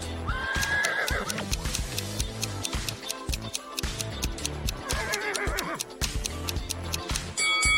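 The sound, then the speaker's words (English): A horse whinnies twice, a shrill, wavering neigh near the start and another around the middle, over a busy background of clattering, ticking noises and murmuring crowd. “And whose horse is this?”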